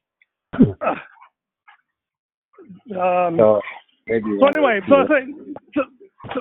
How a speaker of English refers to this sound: Sorry about that. Dogs are getting a little exercised by a very small, inoffensive looking puppy that walks past us.